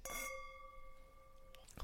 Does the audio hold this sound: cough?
no